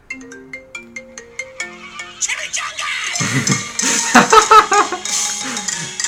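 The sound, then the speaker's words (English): A phone ringtone plays: a short run of bright, bell-like notes picks out a quick melody, then a loud, dense stretch of music with heavy beats bursts in and keeps going. “Here's my fucking ringtone was.”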